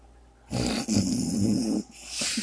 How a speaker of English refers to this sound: I can hear my dad snoring.